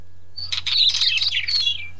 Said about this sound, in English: This is the beautiful, the wheatear bird. Nice.